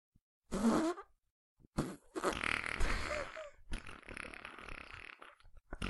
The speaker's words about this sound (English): Assorted fart noises.